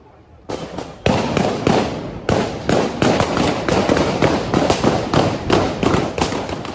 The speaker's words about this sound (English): Ariel Henry is bundled away, his entourage scrambling towards cars as shots continue to ring out. The Prime Minister survived the assassination attempt, the latest attack in the Caribbean nation.